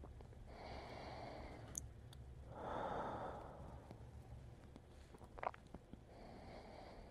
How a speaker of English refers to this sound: Just listen to my breathing.